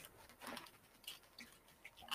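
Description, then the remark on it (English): Soft, irregular taps and patters of raindrops striking a window, scattered unevenly over a quiet, hissy background with no talking. “Oh, well, it's raining outside. I mean, as you can tell from my side, it's you can literally hear like the raindrops like I'm going through my windows.”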